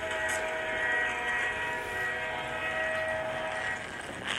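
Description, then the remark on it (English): A steady, loud subway train rumble in a virtual reality ride, with a broad roaring wash and sustained tonal hums, continuous throughout with no talking, like riding inside a moving car. “Dang, there's the other subway car.”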